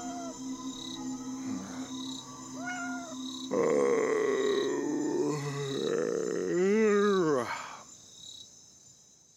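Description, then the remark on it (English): A cat lets out several loud, drawn-out wavering meows on a hot night, waking a sleeper, while crickets chirp steadily in a regular pulsing rhythm in the background. “the cat woke me up last night when I was in my deepest point of sleep.”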